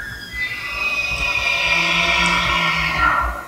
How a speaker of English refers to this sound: It's the bugle of a male elk, which I'm going to call Wapiti to avoid confusion. It's a sound that wasn't heard in the Smoky Mountains for at least a century.